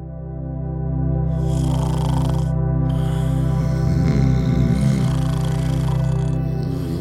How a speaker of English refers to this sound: We all know someone who snores a lot. Whether it's your spouse, or your roommate, or even your dog, snorers are everywhere.